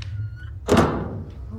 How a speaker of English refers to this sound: It's a long corridor. Yeah. Must be a door somewhere. Door somewhere here. Yeah. There it is.